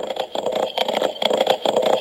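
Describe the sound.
Coconut shells knocked together in a quick, steady galloping rhythm, imitating horse hooves: hollow, mid-pitched clops repeating several times a second, fairly loud, with no talking.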